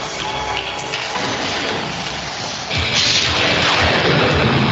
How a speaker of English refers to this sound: Oh, the cartoony lightning. Straight out of He-Man.